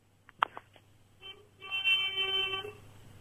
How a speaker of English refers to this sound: Who's beeping their horn? No, it's outside.